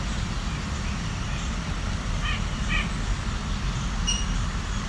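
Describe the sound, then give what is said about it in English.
A white-breasted nuthatch gives two short, nasal, slightly buzzy notes in quick succession, followed by a higher chirp, all over a steady low rumble of traffic noise. “Oh, here's a fairly loud white-breast nuthatch.”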